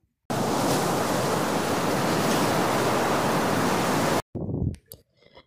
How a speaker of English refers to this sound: When we finished dinner, my husband and I stayed on the seashore, watching the stars and listening to the sound of the sea.